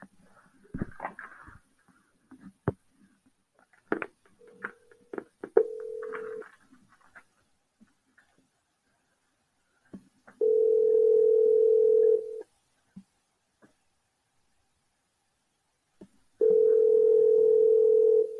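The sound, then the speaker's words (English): A phone line rings out with two long, steady ringback tones separated by silence, preceded by brief clicks and button taps as a call is placed to a coach. “See if we can pull up Coach here.”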